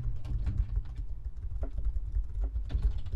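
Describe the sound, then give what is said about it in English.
Rapid, uneven clicking of keys on a computer keyboard, fairly quiet, with a steady low hum underneath and no voices. “I'm typing it in.”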